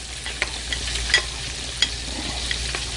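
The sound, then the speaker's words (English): Hot oil is ladled into a seasoning blend to make a slurry for chicken and sizzles, a steady hiss broken by a few sharp crackles and pops, with no one speaking. “So while that's going on, I'm gonna carefully ladle out some of this oil and put it inside this seasoning right here, this seasoning blend.”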